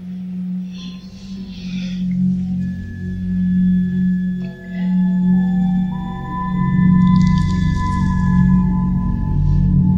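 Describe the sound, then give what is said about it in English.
A dark, ominous film score playing in the background as a character walks away, with a heavy low drone and sustained high tones that shift and swell, tense and brooding, with no voices. “When Susanna walks away, there's like this apex predator music in the background.”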